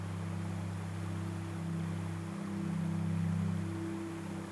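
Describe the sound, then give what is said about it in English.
A steady, unbroken rush of falling water in a forest, even in loudness throughout, with a low droning hum underneath and no voices. “This episode's soundscape is going to transport you to deep within a mystical forest where we will listen to the sounds of a waterfall.”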